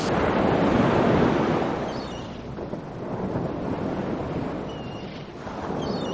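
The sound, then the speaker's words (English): A steady wash of ocean waves and rushing wind out on the deck of a boat, the SS Not Doomed; the roar swells loudest early on, then settles into a constant surge with no voices. “Amazon, you're on a boat.”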